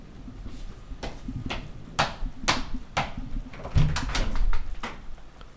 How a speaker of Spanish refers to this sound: ¡Algo llama a la puerta